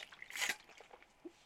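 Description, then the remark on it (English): Someone takes a quick, wet sip of water, a brief slurping hiss followed by a soft low gulp, all fairly quiet with no talking. “I'm going to do this after I take a drink of water.”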